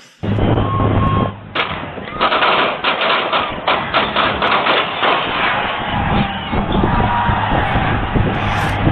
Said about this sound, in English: I have audio of the actual gunshots, like the actual gunfire.